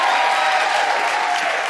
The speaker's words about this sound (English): And Everett, can you give a big round of applause for Tom Selinsky, because he does the unsung hero work.